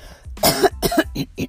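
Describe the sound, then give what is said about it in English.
Someone clears their throat into the microphone in four quick, rough, gravelly bursts, almost coughs, with no talking in between. “I didn't clear my throat before I started this.”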